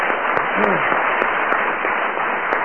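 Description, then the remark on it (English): A programme's audience applauds Timber Taylor and Willie Rushton steadily, a dense, even wash of many hands clapping at a constant loudness throughout, with no one speaking over it. “So let's have another round of applause for Timber Taylor and Willie Rushton.”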